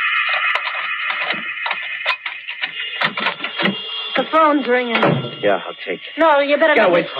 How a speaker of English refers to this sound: Phone's ringing. Yeah, I'll take it.